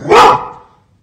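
A dog gives a single loud, sharp bark, a short burst that quickly fades into silence. No one speaks.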